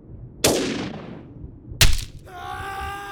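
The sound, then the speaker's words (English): Two loud gunshots, about a second and a half apart, each a sharp crack with a long hissing decay, followed by a thin high ringing tone. “A loud burst detonated behind Tony, and a lightning bolt of pain lanced through the back of his knee.”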